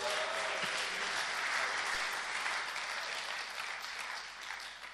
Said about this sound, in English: A round of applause